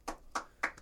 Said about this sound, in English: Clapping starts now.